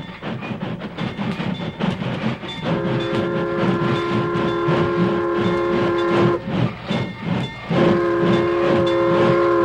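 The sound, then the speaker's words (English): A train approaches and comes to a stop, rumbling and clattering, sounding two long, steady horn blasts, the second cutting in after a short break, with no voices. “Keep out of sight, you fellas, till the train stops.”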